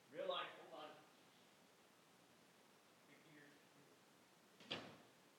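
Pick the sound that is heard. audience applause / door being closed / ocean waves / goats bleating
door being closed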